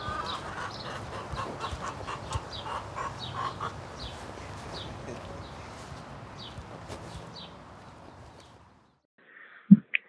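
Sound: chickens clucking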